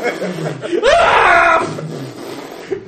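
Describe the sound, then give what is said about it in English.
A voice lets out a drawn-out, exaggerated scream with a slowly sliding pitch, as if imitating a slow-motion cry, loud, with softer vocal sounds before and after. “Screams. Everything in slow motion.”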